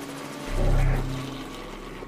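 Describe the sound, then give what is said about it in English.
A helicopter's low, droning engine rumble swells up loudly for about a second, then recedes into a steady murmur, with no voices over it. “Cool helicopter.”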